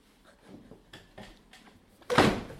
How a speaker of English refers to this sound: Ow! I wanted to jump, fall off the chair, and then I really fell off this chair. Ow. Are you okay? I hit my knee. Yeah, it sounded like that.